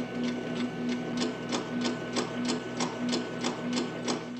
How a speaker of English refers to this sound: The only sound is the whirring and clanking of the impersonal machine as it warms up, receives the communication, and begins to print. This sound resembles a clock ticking away the moments towards the reveal of Bullitt's fate.